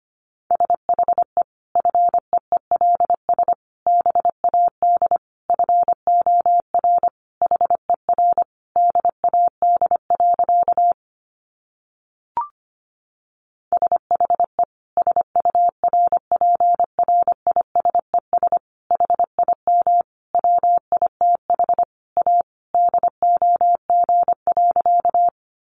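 Morse code keyed at a brisk 25 words per minute: a single steady mid-pitched tone chopped into quick dots and dashes, with a short pause partway through and no voices.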